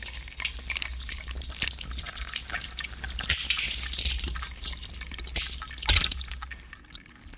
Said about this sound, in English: When you wear this particular sound suit, it makes this amazing sort of rustling sort of sound. It's almost as if you are sort of, imagine sort of running through the forest and you're running over twigs and leaves during the fall.